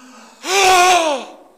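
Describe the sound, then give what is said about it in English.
A single loud, dramatic gasp from one person, a sharp voiced intake of breath lasting nearly a second, with no other talking. “Yeah, he hopes that they will gasp, and then he hopes that they will start to talk about it.”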